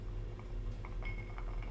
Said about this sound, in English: Yeah, these ice cubes are fucking... Perfect. So he's got like, so what are, is it, it's not a, like a cube, right? Is it? Yeah, it's like a big square. Big square?